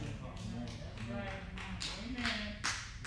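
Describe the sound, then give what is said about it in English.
Two sharp, isolated hand claps ring out in a church over a voice that keeps talking, brief bright smacks rather than sustained applause. “Two claps. That's a shame.”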